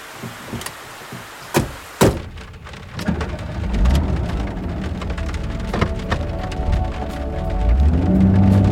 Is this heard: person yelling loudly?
no